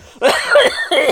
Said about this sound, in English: I made you choke.